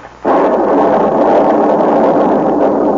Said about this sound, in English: What was that? Lightning just struck that cloud I've been riding on.